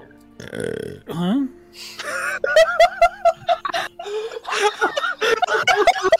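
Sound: burp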